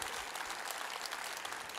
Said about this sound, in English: Come on, y'all, give yourselves a round of applause. You're making it happen.